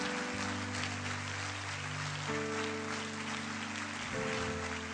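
Steady, dense crowd applause for people who came forward as they are led out fills the whole stretch, a continuous crackling wash of many hands, with sustained music chords humming underneath and shifting pitch a couple of times.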